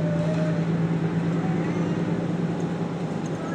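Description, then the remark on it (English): Inside a moving bus, a steady engine drone with a low, constant hum and broad road rumble fills the space, unchanging and fairly loud throughout. “Imagine, in a parallel universe, people on a bus like this all talking about their synchronicities”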